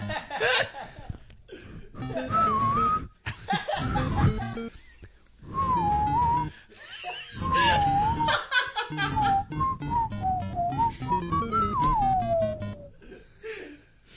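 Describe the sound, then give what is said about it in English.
Someone whistles a short wavering melody, the tune coming in phrases broken by bursts of chuckling and laughter, with a gliding line that drifts downward near the end. “My bumpkin whistle.”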